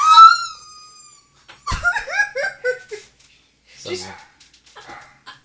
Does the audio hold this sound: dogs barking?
yes